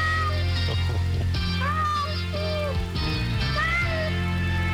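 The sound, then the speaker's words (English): A few cat meows ring out over steady background music, each a short rising-and-falling cry, fairly loud and close, spaced a couple of seconds apart. “There's a cat in the kennel at the Peking Moon.”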